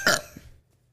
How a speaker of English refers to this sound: I had to burp this whole time.